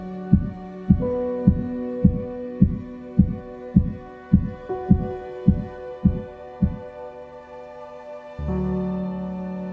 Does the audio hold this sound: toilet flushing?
no